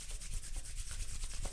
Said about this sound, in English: So hands shoulder width apart. And now go ahead and clap and rub.